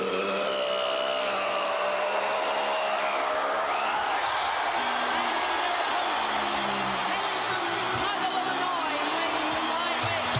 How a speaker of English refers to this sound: When the music hit and the Road Warriors burst through those curtains, the word that we use in the industry is the pop. The crowd pops. In other words, they explode. Whoa, listen to the explosion here, Brain!